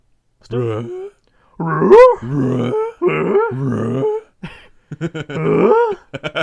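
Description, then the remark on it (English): A person growls and snarls in imitation of a dog, voicing a dog character, several gruff, throaty bursts separated by brief pauses. “Hey, we didn't get a voice actor for this dog.”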